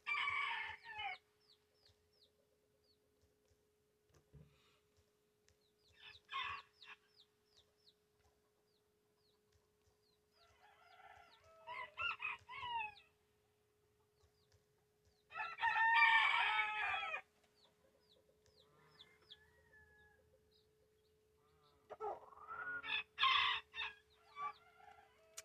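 A chicken crows and clucks in several separate bursts with pauses between, fairly close and loud, with no voices present.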